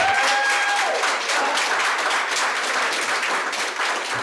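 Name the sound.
audience applause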